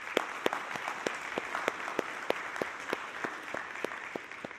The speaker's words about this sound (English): And so let's just give AV a round of applause.